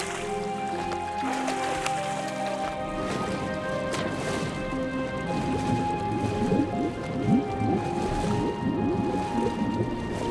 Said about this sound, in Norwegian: Syv ganger, sa han. Herre, og gang etter gang dukket Naaman ned i elva.